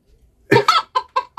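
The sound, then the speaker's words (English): Chickens cluck in a quick run of five short, harmonic calls, two bunched together then three evenly spaced, loud with no talking, played as a soundboard effect. “I could just hear those chickens just calling me. If, get the soundboard up.”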